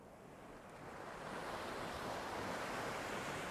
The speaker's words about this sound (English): At a place like this, with dramatic vistas and waves lapping noisily against the shore, it's easy to let the worries of the world melt away and just become spellbound by the sheer awesomeness of nature.